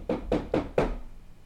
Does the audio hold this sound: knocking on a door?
yes